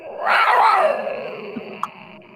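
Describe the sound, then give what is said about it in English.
A person imitates a creature's small growl: one short, raspy roar lasting about a second that swells and then trails off in pitch, with no talking around it. “And the little growl, the little roar doesn't wake anybody up.”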